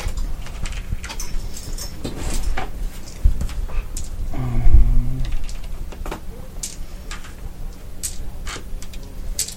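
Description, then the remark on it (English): Many dice are rolled at once in a tabletop game, a rapid clatter of small hard dice tumbling and clicking against a surface, sharp ticks scattered densely across several seconds, with a brief murmur of a voice partway through. “Rolling lots of dice is fun.”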